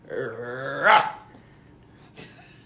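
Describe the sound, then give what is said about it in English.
A person makes a dog-like growl: a rising, throaty voiced rumble that swells into a louder snarling burst, then a brief sharp huff after a pause. Fairly loud, with no speech. “I'm just going to let you know I'm going to growl.”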